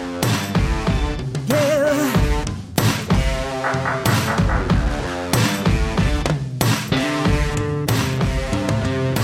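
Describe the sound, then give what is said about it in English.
Sharp knocking thuds land at a steady pulse, roughly every second, cutting through a loud, dense music track with sustained tones and no voices. “That knocking freaks me out.”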